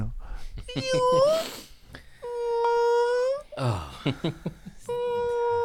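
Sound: voice imitating whale calls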